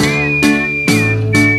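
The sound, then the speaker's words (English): A clear whistled solo melody with short pitch glides rides over a loud band backing during a band's run-through, the band striking regular chords about every half second, the whistle steady and prominent throughout. “should take the whistling solo rather than all of them.”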